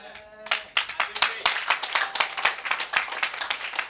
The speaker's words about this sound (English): Oh, your clap offering is suspicious.